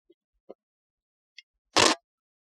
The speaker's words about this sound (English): I bumped my glass against my beer, and this beer has a textured can.